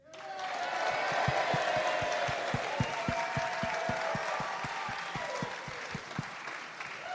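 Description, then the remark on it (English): An audience at a contest, voting by noise for the act Richard the Fourth, screams and shouts loudly over applause, with steady rhythmic thumps of clapping or stamping running through the whole roar, which holds strong for several seconds. “Ladies and gentlemen, if you think it's Richard the Fourth, scream and shout.”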